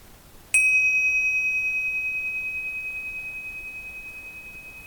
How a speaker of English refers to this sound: And when you hear the bell, we can finish.